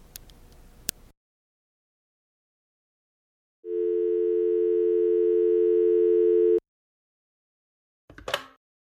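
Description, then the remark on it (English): A steady telephone tone hums loudly for about three seconds after a phone call ends at 2:30 in the morning, then cuts off abruptly. A few faint clicks come before it, and a brief rustling burst follows. “It's 2:30 in the morning, and you just got off a phone call.”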